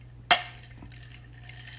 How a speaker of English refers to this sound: He likes to add the ice jingle.